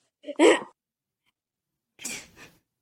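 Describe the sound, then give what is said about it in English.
A sharp, stifled sneeze bursts out, then after a short silence comes a second, weaker breathy attempt that fizzles out without the sneeze coming out. No one speaks. “You know whenever you have to sneeze, but it doesn't come out?”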